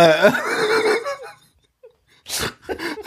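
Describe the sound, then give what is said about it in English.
A voice imitates a man screaming while crawling on a bus floor: a loud, strained, wavering wail lasting about a second, then a pause followed by two harsh, breathy gasping bursts. “He's crawling on the bus floor. Just screaming. Just being like...”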